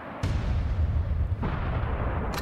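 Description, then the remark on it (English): Two heavy gunshot sound effects boom out about a second apart, each followed by a deep, rolling rumble that fills the gap; loud, with no talking. “Can we get some gunshots for John Boyega?”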